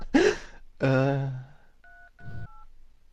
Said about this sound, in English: the tension I'm building as I retardedly type these numbers into my phone is palpable.